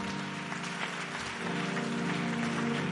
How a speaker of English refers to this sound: Increase that clap offering because your miracle is coming. Clap your hands and say, devil, you can't cross this red line.